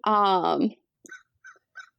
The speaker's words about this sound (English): Oh, I can hear a crow. That's so great. Oh, yeah. Yeah, that's my window open. So he'll pop in.